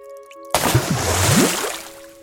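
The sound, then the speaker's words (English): A sudden splash and slosh of water as a foot steps over the lip of a filled bath and plunges in, followed by swirling, gurgling movement that slowly settles. No one speaks. “And then a shift, a more confident step over the lip of the bath.”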